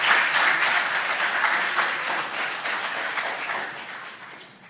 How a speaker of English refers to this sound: Keep clapping. Keep clapping. Keep clapping.